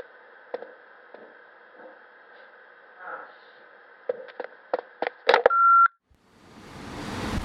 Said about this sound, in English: Leave your message after the beep.